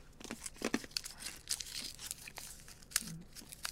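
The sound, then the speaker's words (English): Crackly crinkling of a small plastic Halls cough drop wrapper being twisted open, with irregular sharp bursts of rustle over a few seconds and no talking. “All right, guys, you might have some like crunching noises. Got to pop a Halls here.”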